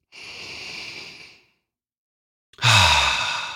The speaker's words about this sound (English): Now, let's get ready. Let's take a deep breath together.